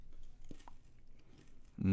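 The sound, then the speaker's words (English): Someone with eyes closed chews a Skittle candy, with a few soft, brittle crunches spaced through the first second before a voice starts talking at the very end. “I like that crunch sound.”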